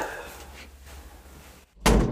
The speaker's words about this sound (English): You want to close the door? He's gonna come soon anyway.